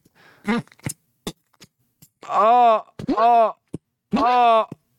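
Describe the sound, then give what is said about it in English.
A man in a bathroom groans and strains on the toilet after eating too much elk meat: three drawn-out, effortful moans with short grunts and clicks between them. “This is me in my bathroom. I had too much elk meat.”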